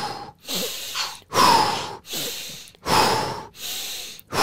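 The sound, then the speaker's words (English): Repeated breathing cycles as part of a breathing technique practice: a sniffing inhale through the nose followed by a loud, forceful blast of breath out through the mouth, about four times in a steady rhythm, with no talking. “I like to do like a daily practice of breathing techniques where I first breathe in through the nose, like, and then very explosively out through the mouth.”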